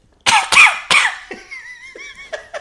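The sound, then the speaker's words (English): Three loud, harsh coughs in quick succession, followed by a few fainter wheezy, squeaky catches of breath as the coughing fit trails off. No talking. “Just cough.”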